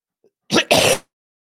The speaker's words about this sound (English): I tried to mute that cough. I'm sorry, guys.